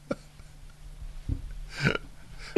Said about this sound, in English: I have a cough. Right. I know. It's a problem. Excuse me. Sorry to the listeners. This is real. My cough.